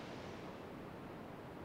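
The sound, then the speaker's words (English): A soft, steady wash of Pacific Ocean waves on the shore, heard as a continuous hiss of surf with no distinct breaks or voices, fairly faint. “Let me know how you like the combination of the forest bathing with the healing sounds of the ocean in the background with the yoga nidra style combined together in the comments.”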